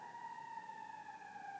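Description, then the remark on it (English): An emergency siren holds a steady, sustained wail, its pitch sagging slightly as it goes by. No one speaks over it. “Just even that inclusion of that, the sound of that siren.”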